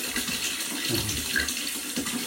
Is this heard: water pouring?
yes